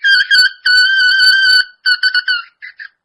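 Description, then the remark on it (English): A bagpipe chanter reed buzzes with a shrill, steady high tone, first in a few sustained blasts, then in shorter choppy bursts that end in two quick toots. “That one's a little bit buzzier already.”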